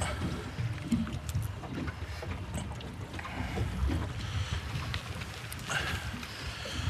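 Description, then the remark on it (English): A small boat's outboard motor drones steadily throughout, a constant low rumble mixed with water and wind noise, with no one speaking, while people fish from the boat with bait and float. “Turn the outboard off.”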